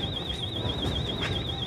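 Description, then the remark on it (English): An alarm wails continuously with a rapidly warbling electronic tone, steady and fairly loud, over a rumbling background of low-frequency noise. “You've got door wide open, the alarm's going off.”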